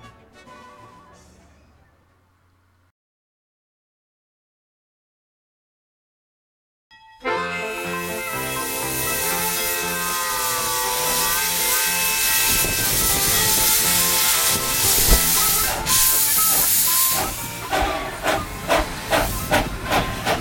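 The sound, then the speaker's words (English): A Disney steam train locomotive vents a loud, sustained hiss of steam after a brief bit of music and a silent pause, with rhythmic chuffing puffs emerging near the end. “And so, instead of touring the park, this month I'm going to share some Disney steam train footage that I've taken over the past year.”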